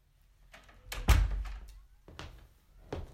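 A cinema manager closes a door behind him; it swings shut with a heavy thud, followed by a few softer clicks and knocks as it settles and latches. No one speaks.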